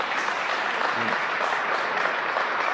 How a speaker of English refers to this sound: I'm pretty sure the handful is clapping